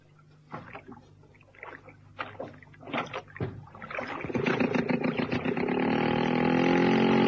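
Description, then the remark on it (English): Hollow wooden knocks and clunks sound, then give way to a steady, growing wash of splashing water as a rowing boat pulls through a lake in the late afternoon. “Outside and into the boat.”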